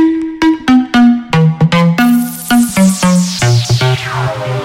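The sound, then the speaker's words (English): A phone ringtone plays a bright electronic melody of short repeated notes in a steady rhythm, loud, with no one talking over it. “Let's get on the phone to”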